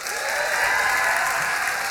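An audience claps their hands to vote for the winner of a rugby passing competition, in a steady, dense burst of applause that holds at an even level for about two seconds, with no one speaking over it.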